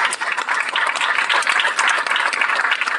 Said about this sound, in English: I think we owe them a big round of applause for that.